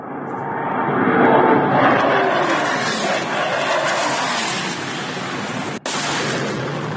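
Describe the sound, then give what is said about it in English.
Fighter jets scream overhead on the western outskirts of Kyiv, Ukraine, a loud, broad rushing roar that swells early, then holds steady for several seconds, broken by a brief sharp dropout near the end. No voices. “And then on the western outskirts of Kyiv, fighter jets scream overhead, following by the sound of jarring explosions.”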